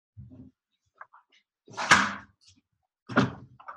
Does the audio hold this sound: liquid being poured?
no